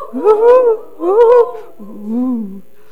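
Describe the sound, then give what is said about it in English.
Human voices imitate an owl's hoot: two rising-and-falling hoots followed by a longer, lower one, sung clearly with no talking around them. “The owls, can somebody sound like an owl?”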